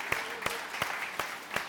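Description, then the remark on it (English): An audience applauding to celebrate mothers and femininity: a dense, steady wash of clapping with sharper accented claps landing in a regular rhythm, roughly three per second, at moderate loudness with no voices. “Let's give our girls a big round of applause.”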